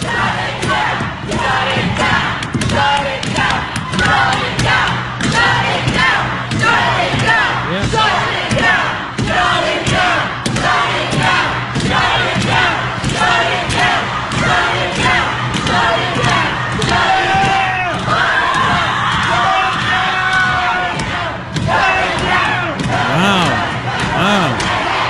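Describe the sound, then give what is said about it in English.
A loud crowd of protesters shouts and chants continuously while slamming on the big, thick, locked doors of the Supreme Court on the Saturday Kavanaugh was confirmed and sworn in. A steady barrage of heavy thuds blends into the roaring voices throughout. “Listen to these people slamming on the doors.”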